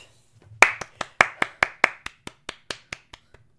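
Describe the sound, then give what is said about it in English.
A single person claps about a dozen times in a quick, steady rhythm, the claps sharp at first, then growing softer until they stop. No one speaks. “Applause?”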